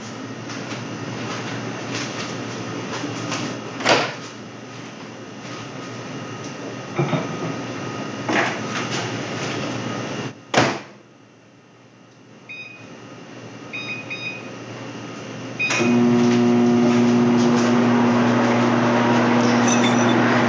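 A few clicks and short keypad beeps, then a microwave oven starts cooking a spaghetti squash set on a paper towel on the turntable for 4 minutes, with a steady, loud electrical hum that continues to the end. No one speaks.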